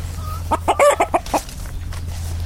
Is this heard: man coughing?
no